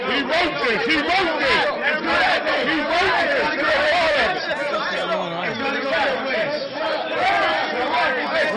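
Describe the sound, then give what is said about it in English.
A group of people chatter over one another in a room, many overlapping voices forming a steady, fairly loud babble with no single speaker standing out. “Because every time I say something, these niggas keep talking.”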